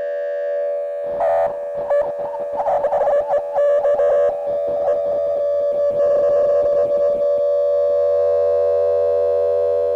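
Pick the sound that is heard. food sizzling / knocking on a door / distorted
distorted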